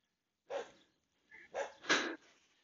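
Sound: dog barking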